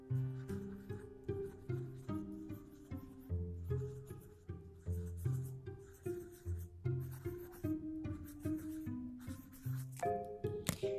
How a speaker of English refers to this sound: First time in the morning, I pick my pencil. Can you hear it? A normal pencil. And a small piece of paper. And then I start the lazy warm up.